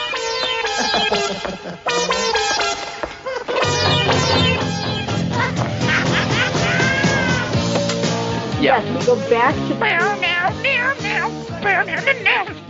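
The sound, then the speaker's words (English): A movie's loud, dense theme song plays throughout, its sung vocal line made of repeated cat-like meows over full instrumental backing, with sliding, wavering notes in the middle. “And we play the theme song again.”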